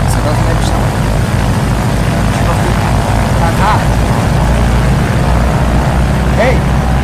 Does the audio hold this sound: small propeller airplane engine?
yes